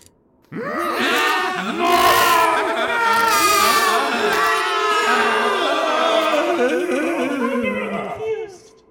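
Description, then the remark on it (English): A group of voices imitates shrieking, confused trolls, overlapping wails, groans and high squeals that rise and fall loudly for several seconds before fading out. “Sound of confused trolls shrieking and running.”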